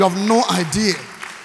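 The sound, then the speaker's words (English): A church audience claps steadily in the background, a soft crackling wash that continues under a pastor's loud preaching voice and carries on briefly after he pauses. “You're clapping the signals.”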